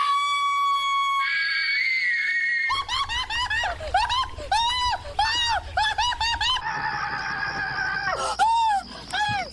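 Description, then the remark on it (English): A brief steady electronic tone gives way to a burst of loud, high-pitched screaming in US retailer GameStop's Christmas TV commercial: many quick, overlapping shrieks that rise and fall in pitch, ending with one long wavering scream. “Now, the US retailer GameStop's Christmas commercial had an awful lot of screaming in it.”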